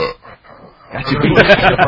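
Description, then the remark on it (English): After a moment of near quiet, a man leans into the microphone and lets out a loud, drawn-out burp that rumbles for about a second, deep and guttural with a raspy, croaking texture. “Leans into the mic when he knows he's going to burp, too.”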